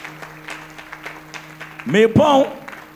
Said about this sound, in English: God, give the Lord a clap and bless his name.